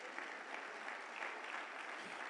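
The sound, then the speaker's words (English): An audience claps steadily, a dense, even patter of many hands at a constant level for the whole stretch, with no voices standing out above it. “But in the kingdom of God, he guarantees that when you give, yes, clap, clap, clap.”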